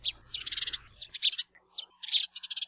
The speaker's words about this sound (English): House sparrows are one of the most common wild birds in the world. We've got their song, thanks to the Cornell Lab of Ornithology.